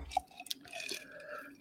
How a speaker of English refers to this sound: Mine was empty, so I had to pour a new one.